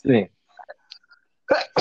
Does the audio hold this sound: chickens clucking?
no